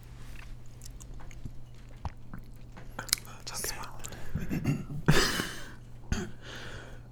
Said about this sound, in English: are you still making the mouth noises? I'm still chewing the boba. Okay, keep chewing.